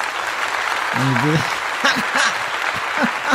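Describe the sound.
A dense wash of crowd applause from a sound effect fills the whole stretch at steady volume, with a few voices calling out and whooping over the clapping.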